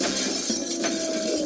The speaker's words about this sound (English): he's in the saloon. That's he picks a chair up, the bloke ducks, he chucks it straight through the window. Bang, yeah.